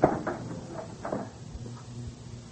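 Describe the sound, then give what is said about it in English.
A dressing room door is pulled open, beginning with a sharp clunk of the latch followed by a few softer rattles and scrapes as it swings. “Quick, get that door open.”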